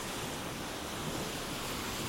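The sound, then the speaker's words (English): A steady, hissing wash of surf rolls on without pause, like waves breaking and spreading along a beach shoreline with icy water, with a faint breezy rush and no voices. “And when she gets onto the beach, it feels great. She takes her shoes off and paddles, flinching at the icy water.”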